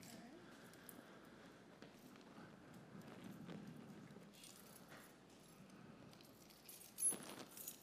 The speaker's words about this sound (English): Now I'd like for you to look through the keys and see a little bit and see if you can find the right key.